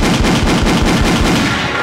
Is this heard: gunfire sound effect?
yes